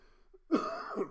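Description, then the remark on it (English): A single rough cough, a permanent cough caused by a paralyzed left vocal cord, bursts out sharply and trails into a raspy, throaty rumble with a second small push near the end, heard alone with no talking. “Now, I got a permanent cough for my trouble.”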